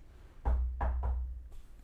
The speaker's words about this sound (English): Better knock on some wood.